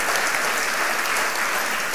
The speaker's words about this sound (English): Oh, he's here. Let's give him a big round of applause, shall we? Yeah.